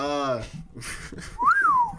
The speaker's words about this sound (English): you got to drop the whistle, man.